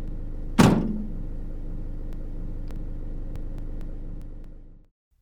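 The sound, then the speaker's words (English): A single loud car door slam as a news team leaves, followed by the steady low rumble of their car's idling engine that holds for several seconds before tapering off as the car races away. “After the news team left, racing off to the next scene of disaster and human tragedy”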